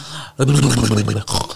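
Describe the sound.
A person imitates a French bulldog's heavy breathing: a long, rough, throaty snort-like exhale with a steady low buzz, then a shorter raspy breath right after.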